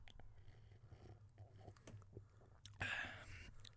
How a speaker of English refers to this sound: Listen to this. This is my ASMR mic. Let me do a sip really close to it.